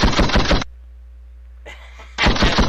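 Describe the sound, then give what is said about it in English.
Loud volleys of rapid gunshot sound effects, played from a soundboard, crackle in two bursts, one at the start and one at the end, separated by a brief lull with faint background noise. “Yeah, right, I'm going to get some gunshots in here.”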